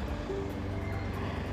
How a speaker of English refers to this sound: And it sounds a bit like a squirrel, a reversing Sainsbury's lorry. I don't know whether you've recently heard a squirrel sort of quacking in a tree. They kind of quack, they go, ah! And that Sainsbury's, there it goes again.